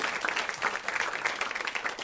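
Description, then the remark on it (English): An audience breaks into steady applause for everybody on a show hosted by Cameron Esposito, many hands clapping at once in a dense, crackling wash that stays fairly even in loudness throughout, with no voices standing out above it. “Clap it up for everybody on the show.”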